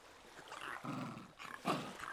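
A dog named Alan, hiding behind a woman's legs, gives two short, low, timid growls with a brief pause between them, fairly quiet, over a faint background hiss.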